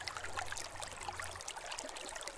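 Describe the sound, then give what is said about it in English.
Water trickles and burbles steadily along a small brook, a continuous soft babble with bright splashing flecks, fairly quiet, with no voices. “When they came to the next brook, the sister heard this also say, "Who drinks of me will be a wolf.”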